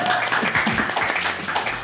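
A live audience applauds to welcome a guest, many hands clapping in a dense, continuous patter at an even loudness throughout, with no voices standing out.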